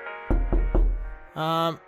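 Three firm, evenly spaced, resonant knocks on a door at midnight, followed a moment later by a short, loud buzzing tone.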